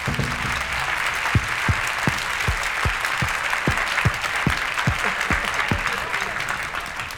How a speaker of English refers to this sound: Just before we go any further, ladies and gentlemen, I would like you to give a big round of applause to the orchestra that we have here tonight. There they are.